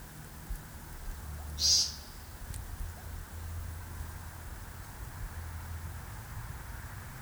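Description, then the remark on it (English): A single short, buzzy nasal 'peent' call of a male American woodcock rings out once in cold, wet air, over a steady low outdoor rumble with no other calls following. “slowly rotating, squeezing every muscle, making his little body vibrate with energy as its paint rang out in the cold, wet air.”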